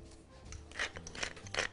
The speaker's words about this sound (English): So I'm just gonna take just a little bit of kosher salt and I'm just gonna season these little pieces of lamb loins on both sides with a little salt and pepper.